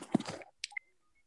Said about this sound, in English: Or there could have been electrons that made that toy go off. But this is what it sounded like.